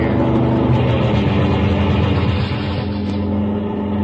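A steady, loud engine roar with a low rumbling drone as a car rounds a bend and comes fast down the highway, holding constant throughout with no voices.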